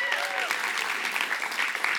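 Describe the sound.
An audience breaks into steady applause, many hands clapping in a dense, continuous patter at an even loudness, with a few faint voices and a brief whoop rising through it.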